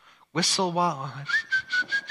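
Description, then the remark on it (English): A person whistles a short, steady tune, the thin clear note held for about a second with rhythmic breathy puffs, after a brief hummed or voiced sound at the start. “Whistle while you're out walking.”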